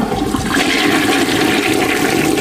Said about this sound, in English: I keep flushing. That don't make no difference. Yeah, that's what happens when you flush the toilet. It spins it all around and chops it all up and goes down the drain.